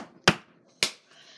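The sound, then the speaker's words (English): A small plastic water bottle cap clatters onto a hard floor, two sharp clicks about half a second apart as it hits and bounces, with no one speaking. “Oh, God, I dropped the freaking cap to my water bottle.”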